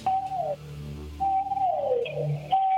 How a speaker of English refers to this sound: What are those sounds? What are those sounds? Can you please tell me what's going on? Family of blue whales. Wait a second. You have a family of blue whales at your door right now.